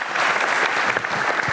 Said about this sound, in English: One more round of applause for Lisa.